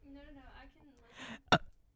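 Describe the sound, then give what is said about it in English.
A short, abrupt burp close to the microphone, loud and sharp, coming right after a breathy rush of air and some brief speech at the start. “I'm just sitting here burping into the mic.”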